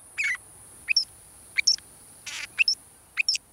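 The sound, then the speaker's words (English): A northern shrike, a robin-sized pale gray bird with black wings and a jet black mask, gives its quirky metallic song: short, bright two-note phrases repeated in a steady rhythm about once a second, with a brief harsh buzzy note among them, clear against a quiet background. “But don't let this quirky metallic song fool you.”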